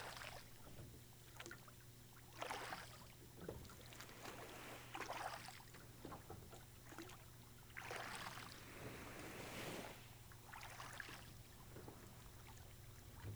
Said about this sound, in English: You resume rowing to the small island. Which is getting closer now.